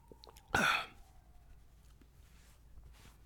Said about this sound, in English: Quick sip of water, boss. Don't mind me, boss.